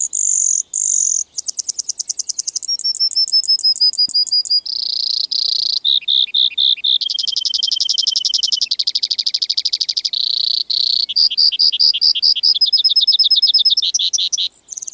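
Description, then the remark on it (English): A Brewer's sparrow sings in spring from sagebrush in the Columbia Basin of Washington State, a long, continuous song of rapid high trills and buzzy chirps, shifting pitch and tempo from phrase to phrase, loud with no talking. “Every spring, one of the most musical and complex bird songs on the continent rings forth from the sagebrush of the Columbia Basin in Washington State.”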